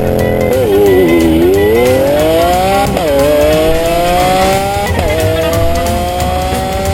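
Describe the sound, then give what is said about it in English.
A car engine revs hard, its pitch climbing steadily, dropping at two gear shifts, then climbing again. It stays loud and continuous throughout, with no one talking. “This car is nutso.”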